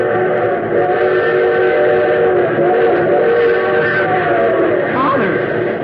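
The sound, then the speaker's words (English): A train whistle blows in a long, steady, loud chord that holds for several seconds as the train approaches, due to pass within a mile and a half, with rail rumble underneath and a slight bend in pitch near the end. “Well, that train whistle sounds closer.”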